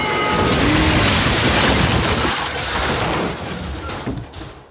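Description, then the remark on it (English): A train crash sound effect depicting a train accident just outside Seven Oaks: a loud, sustained crash of grinding metal and booming impacts, dense and roaring across the whole range, slowly tapering off toward the end with a few scattered clanks. No one speaks. “Will our heroes survive what sounds like a horrific train accident just outside of Seven Oaks?”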